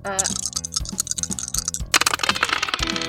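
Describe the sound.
Busy clattering of dice as a player rummages to find their dice, with rapid irregular plastic clicks and rattles that swell into a denser jumble near the end, over faint background voices.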